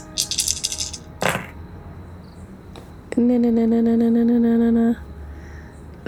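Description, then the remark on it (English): A brief burst of dice clattering and rattling across a hard surface as a tabletop role-playing player rolls for dexterity and stealth, followed after a pause by a steady, buzzing tone that holds for about two seconds before cutting off. “Do you want to roll dex and stealth for me then, as a car?”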